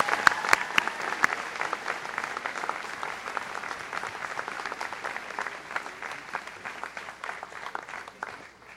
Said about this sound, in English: please join me in a round of applause for Connor